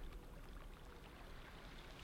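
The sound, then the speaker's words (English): Water splashes and churns continuously at a low level as a person splashes while swimming near a reef, a steady wash of sloshing with no distinct pauses and no voices. “Stop splashing me.”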